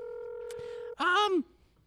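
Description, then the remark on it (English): A steady telephone dial tone hums, broken by a couple of sharp clicks as the switch hook is jiggled to fix a phone line that is not working, then cuts out abruptly as a short vocal sound follows. “Let me just jiggle this switch.”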